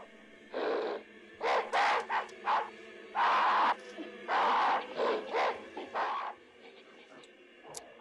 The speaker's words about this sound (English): That sound of bees is also a chorus of human voices.